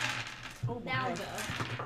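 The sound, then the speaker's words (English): Dice are rolled for an insight check and clatter and rattle across a hard tabletop in a burst of quick clicks, with muffled voices talking in the background. “Roll insight. Okay, insight is... Can we get all these dice out of here?”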